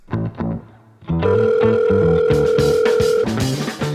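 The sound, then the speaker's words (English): A telephone rings with a steady, unbroken electronic tone lasting about two seconds, laid over busy, loud musical sounds that continue after the tone stops. “Thank you for calling Clerically Speaking. If this is truly a theological emergency, please dial 1 at any time.”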